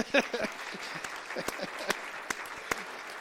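An audience breaks into applause for a pastor and his wife who just celebrated 50 years of marriage, a dense, steady patter of many hands clapping with a few sharper individual claps standing out, and some faint voices mixed in beneath it.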